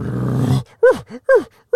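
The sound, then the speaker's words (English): A person imitates the bugle of an elk heard in the woods: a low, rough, sustained groan, then three short squealing whoops that rise and fall in pitch, each loud and separated by brief pauses. “And it turns out it was just an elk that had the weirdest bugle I've ever heard.”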